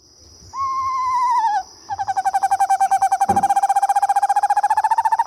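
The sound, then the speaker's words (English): A small screech owl calls with a hoarse, whinnying trill, a little higher than a barred owl's: a short sustained note, then a long, rapidly pulsing trill that holds steady for several seconds, clear with no talking. “They almost make a hoarse whinny. It's a trill, but it's a little higher than a barred owl, and it's more prolonged.”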